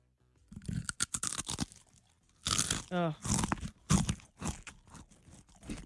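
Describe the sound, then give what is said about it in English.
Loud, irregular crunching from chewing a Cheez-It cracker: rapid bursts of crisp, crackly mouth noise in two runs separated by a short pause, with a brief voiced, wavering sound mixed into the second run. “And that's one Cheez-It.”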